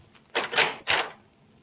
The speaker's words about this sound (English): Open the door to the press room,